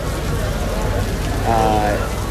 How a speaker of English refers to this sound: Good stuff to do when it's raining outside, which it has started to do.